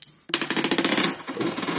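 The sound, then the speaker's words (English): A handful of dice spill onto a hard surface, clattering in a quick, dense burst of clicks that keeps rattling and tumbling for over a second before settling. “So you get these three dice back, so you're down to 7.”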